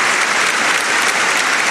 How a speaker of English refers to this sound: Drop a bomb for this one because it deserves a round of applause.